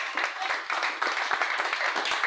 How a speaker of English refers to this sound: Clap it up for him.